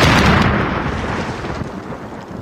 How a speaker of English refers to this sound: Or explosions.